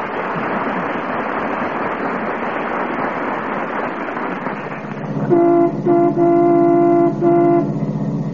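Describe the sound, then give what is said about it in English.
The McGee family car from Fibber McGee and Molly, driven by Mrs. McGee, rumbles along 14th Street with steady engine and road noise, then its horn blares in three loud toots, the last ones short and clipped. “That's the McGee family car coming down 14th Street.”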